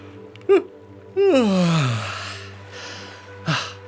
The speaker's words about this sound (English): I'm stretching my face. Oh, I feel a yawn starting.